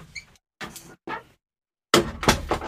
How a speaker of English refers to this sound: Did you want me to open the door? Yeah, could you do that? Conspiracy corner? Thank you.